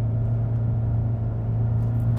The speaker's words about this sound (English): Oh my gosh, this freaking bus is driving ridiculously. Thank you. Ugh.